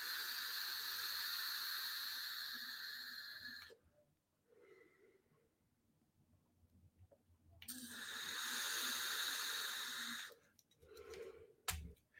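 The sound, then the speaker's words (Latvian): Two long draws of air through an e-cigarette vape while its airflow setting is being tested, each a steady airy hiss with a faint whistling tone lasting a few seconds, separated by a quiet breathy pause and followed by soft exhaled puffs. “Tieši gaisa vilknes ziņā, es nekādu atšķirību nejūtu, vai uz puses, vai uz pilnu.”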